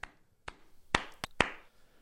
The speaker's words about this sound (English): Do you like the clapping? That's solid.